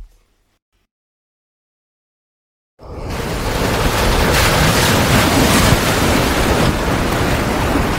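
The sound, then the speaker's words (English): After a few seconds of silence, loud roaring wind and crashing waves surge in and churn continuously as a ship carrying 100 head of cattle is tossed violently in a rough, stormy ocean. “A ship tossed in the ocean with 100 head of cattle moving back and forth violently.”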